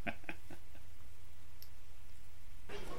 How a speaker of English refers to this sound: Here's 20 minutes of drunken conversation with in a very loud bar with lots of clattering in the background.